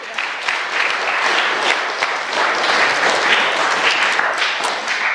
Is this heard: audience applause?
yes